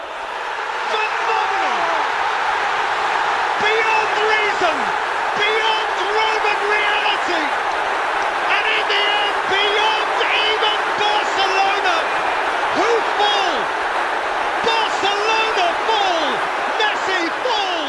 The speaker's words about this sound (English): And the crowd just erupts again.